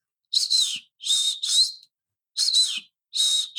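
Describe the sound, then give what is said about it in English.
A person whistles an imitation of an African emerald cuckoo call: five clear, high whistled notes, some paired, each wavering and dipping slightly in pitch, with short pauses between and no talking. “But it gives a good idea of what the call sounds like.”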